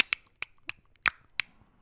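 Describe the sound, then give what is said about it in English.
A series of about six sharp tongue clicks at an uneven pace, bright and snappy, standing alone with no talking. “Make a clicking noise?”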